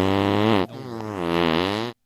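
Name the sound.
fart sound effect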